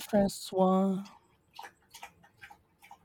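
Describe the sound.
A brief voiced sound, then a run of soft, evenly spaced gulps and swallows as someone drinks water, fairly quiet.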